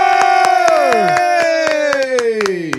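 An audience claps and cheers to welcome a guest. Sharp claps land at an uneven pace beneath loud, sustained whooping voices whose pitch slowly slides downward.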